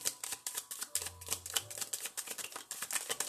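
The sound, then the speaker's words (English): A deck of tarot cards is shuffled, producing a rapid, steady flurry of crisp flicking and slapping sounds for a few seconds, with no one talking. “Cards is just flying.”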